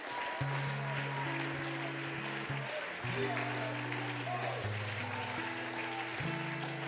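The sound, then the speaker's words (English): An audience claps their hands unto the Lord in praise, a dense, steady wash of hand claps lasting the whole stretch, while sustained low keyboard chords shift underneath and indistinct voices blend into the crowd noise. “Why don't we clap our hands unto the Lord?”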